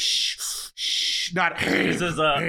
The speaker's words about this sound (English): The big man is breathing heavily again. I don't like it when he breathes so heavy. I want him to breathe a light.